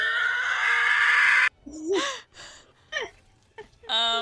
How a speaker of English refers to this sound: Okay, here's that. Here's the Howie scream.